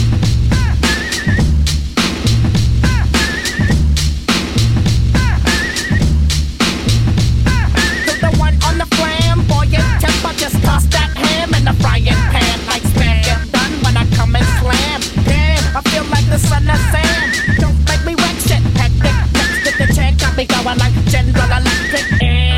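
A hip hop song plays loud and continuously, driven by a steady, punchy drum beat over a repeating deep bass loop, with brighter melodic sounds layered on top.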